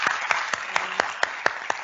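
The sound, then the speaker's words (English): A crowd applauds a panel at the Forum for Dwelling Justice at the Capitol Theatre in Melbourne, steadily, a dense wash of many hands clapping, with a few sharper, louder claps standing out at a regular rhythm. “Everyone, could you give our panel a very great round of applause?”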